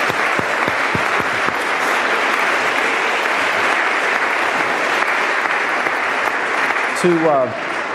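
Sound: audience applause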